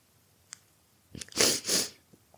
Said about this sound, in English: Sorry for the sniffling noises, it probably sounds horrible, and like I said, I don't, at least I managed to get the intro without crying.